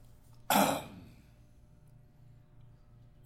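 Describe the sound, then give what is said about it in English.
A single harsh, throaty cough, loud, as a voice mimics hacking something up to spit it on the ground, then fading into a quiet hum with a faint click at the end. “Cough out the blood clot that was your trachea.”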